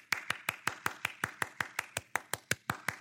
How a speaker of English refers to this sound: people, what are you applauding?